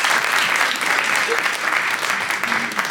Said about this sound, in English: Come on, can we give them a round of applause? Well done, guys. Good job.